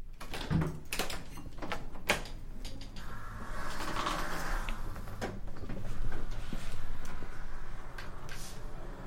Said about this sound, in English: It is a building that I really like to explore at different times in the year to find new sounds inside of it. So I stumbled upon this fire door. It was like on an evening. There was nobody in the building